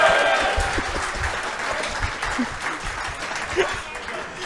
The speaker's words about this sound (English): Big round of applause